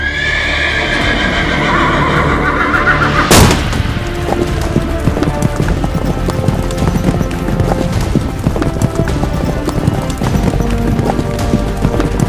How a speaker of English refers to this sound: Everyone saddles up and you burst out the stable doors as you collectively ride towards Highclaw at full gallop.